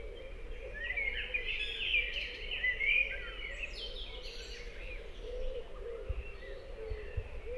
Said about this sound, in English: There are some noisy creatures out here. But altogether, it's a beautiful, peaceful setting. I hear some birds in the background.